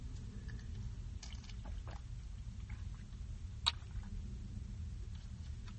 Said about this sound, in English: I did another marg. Got a little tequila. You got some of that El Jimador left over. So that's what I made. Hopefully you guys have something to drink. If you got them, drink them. Bottoms up. Cheers, everybody. My first drink of the day.